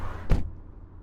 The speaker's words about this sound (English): While the couple are looking for the first aid kit for you, you quickly open the car door and see the keys are still in the ignition.